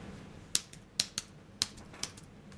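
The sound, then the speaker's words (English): A handful of sharp, clicky computer keyboard key presses at an irregular pace, fairly crisp, with no talking over them and a quiet murmur underneath. “You have something on the keyboard.”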